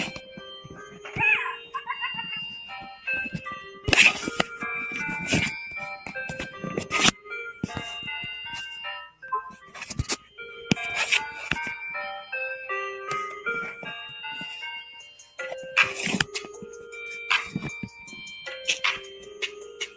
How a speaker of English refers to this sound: Stop this damn music, man. My damn phone.